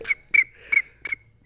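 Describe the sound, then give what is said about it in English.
A person imitates the chirping crickets of a summer evening in Iowa with five short, bright whistled chirps in a steady rhythm, each with a sharp high-pitched tone, and no talking. “Oh, I thought you were doing a bird, but that was a really good cricket.”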